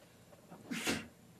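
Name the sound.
sneeze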